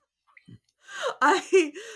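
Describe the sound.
A sudden excited gasp bursts out after a moment of near silence, in reaction to a Divine chorus effect with serial number 666, followed by a couple of short, voiced, breathy exclamations with rising and falling pitch.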